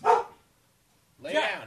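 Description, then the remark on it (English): A dog barks twice, a short sharp bark followed by a pause of about a second, then a longer, harsher bark. Both are fairly loud. “Yeah, your dog's barking.”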